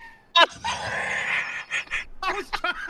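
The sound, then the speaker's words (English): A screaming goat novelty toy lets out a loud, harsh bleating scream that holds for about a second, followed by shorter squawking bursts and what sounds like laughter. “I've actually caught the screaming goat.”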